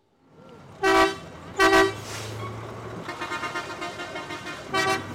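Loud bus horns blare in short bursts, two honks and then another a few seconds later, over a steady rumble of engines and busy traffic. Buses arrive and leave at 6 a.m. outside the gates of a free zone, dropping off tens of thousands of workers for blue jeans assembly lines.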